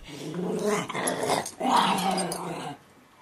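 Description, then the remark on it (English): A 14-pound dog, Frankie, growls in two long, rumbling bursts, the second rising a little higher, while happily wrestling with another dog, Memphis, with no one talking. “the dog whisperer, would be horrified by my behavior”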